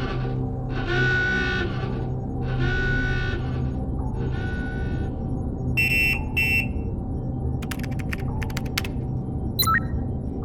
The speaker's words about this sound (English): Alert state. Alert state. We are at DEFCON 1. DEFCON 1. Red alert. Red alert. All specialists to stations.